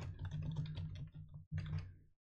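Rapid typing on a computer keyboard: a dense flurry of clicking keystrokes for about two seconds, with a brief pause before a final burst, over a low steady hum.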